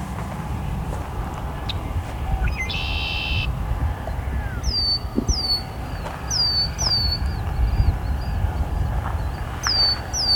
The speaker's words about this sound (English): And of course these two red-winged blackbirds calling and singing.